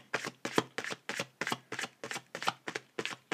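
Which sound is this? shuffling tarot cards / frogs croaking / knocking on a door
shuffling tarot cards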